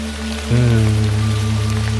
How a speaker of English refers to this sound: I mean, this is basically the same, but with rain instead of waves.